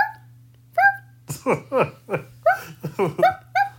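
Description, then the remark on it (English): A person imitates a dog barking with a quick series of about ten short, loud, yappy barks over a faint steady hum. “My dog barks are pretty on point.”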